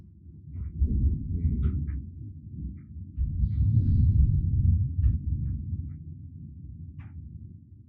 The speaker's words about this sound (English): And do you hear that thunder? Wow. Thank you. That's so epic. I hope this picks that up.